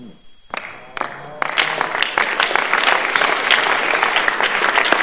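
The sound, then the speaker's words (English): An audience bursts into applause, starting with a few scattered claps and swelling into steady, loud clapping from many people that continues to the end. “Anybody that is not clapping is a suspect.”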